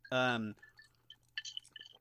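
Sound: ice cubes clinking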